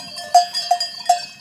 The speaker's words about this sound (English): And what very quickly became clear to me in that moment is that cowbells in Switzerland aren't just about postcards or what to sell in a gift shop or whatever.